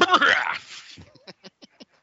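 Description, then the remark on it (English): A loud, raspy throat-clearing burst, followed by a quick run of five short, evenly spaced softer pulses that fade into silence. “You're just going to go clear my throat.”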